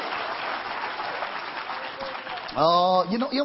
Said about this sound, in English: Somebody take it by faith and give the Lord a hand clap.